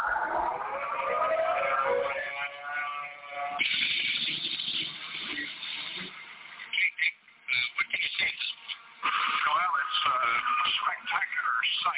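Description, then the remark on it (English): A civil defense tornado siren in Metro Louisville, Jefferson County, activated for a tornado reported on the ground near Brandenburg and heading toward Louisville, wails steadily through muffled, radio-quality audio, then gives way to crackling bursts and overlapping voices. “We think the siren should be activated at the present time.”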